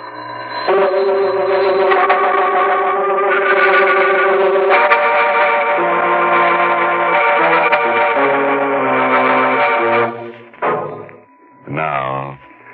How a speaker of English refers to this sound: The bell is still ringing.